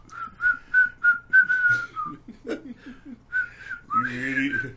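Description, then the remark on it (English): A person whistles a short, bouncy melody of a classic 90s song in quick separate notes, pauses briefly, then whistles a few more notes ending on a sliding tone, fairly clear. “I can't whistle right now.”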